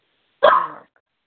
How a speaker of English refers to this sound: Sorry, my dog's name's Lucy because she's barking because I'm saying her name.